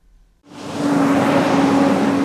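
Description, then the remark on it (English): Delivery trucks roar in suddenly after a brief quiet moment, their loud engine rumble holding steady with a droning hum as they pass a small wooden building, the 1862 Trujillo adobe, on an industrial street in Riverside, California. “On an industrial street in the city of Riverside, delivery trucks rumble past a small wooden building.”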